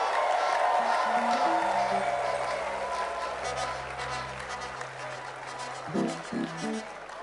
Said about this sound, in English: Clap for our wonderful Arubans.